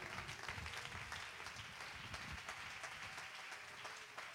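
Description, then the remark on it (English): A crowd claps continuously unto the Lord, a dense wash of many hands applauding at once, steady, with no clear rhythm and no one speaking over it. “Oh, clap your hands unto Jesus.”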